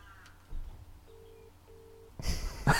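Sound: phone call being dialed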